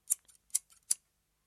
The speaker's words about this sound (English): Fine, I'll use my pocket scissors.